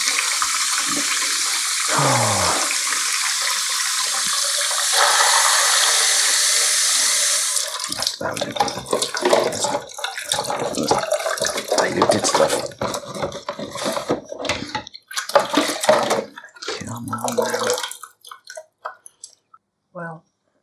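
Tap water gushes steadily into a Patson film developing tank for several seconds, then gives way to sloshing, gurgling and plastic knocks as the tank is swirled and handled.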